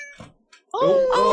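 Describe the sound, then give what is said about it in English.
A cat meows: a couple of brief, faint chirps followed by a long, loud wailing meow that rises and holds. “Meow, meow. Meow.”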